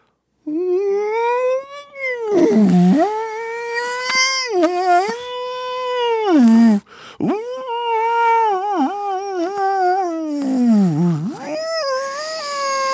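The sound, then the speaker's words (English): A person imitates whale calls with long, wavering, high-pitched moaning cries that swoop up and down, voiced loudly in several continuous phrases with brief breaths between. “I don't know how I did on the whale sounds.”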